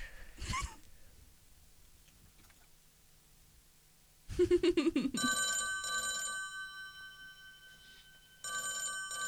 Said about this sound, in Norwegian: Hallo? Hvem det nå som ringer på min telefon? Jeg har ventet mange timer på å svare noen.